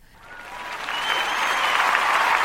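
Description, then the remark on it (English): A recorded applause sound effect of a crowd, with dense, steady clapping that starts softly and swells louder over a couple of seconds, bright and hissy, with no voices. “He put a bunch of clapping people.”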